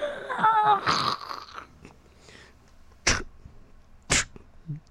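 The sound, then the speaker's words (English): A voice imitates a creaking, crunchy floor being walked on: a strained, creaky vocal groan followed by two sharp, crunchy mouth bursts spaced about a second apart, fairly loud. “That crunchy? A crunchy floor?”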